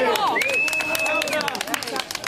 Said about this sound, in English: And there was a moment when one abuse survivor and advocate yelled out 3 cheers for Victoria Police, and the whole crowd roared.